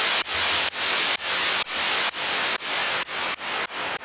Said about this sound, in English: I have a little bit of a filter going on here, so it's sweeping down and up, and that's creating this cool tension, rising and falling effect in the white noise. Let's give this a listen.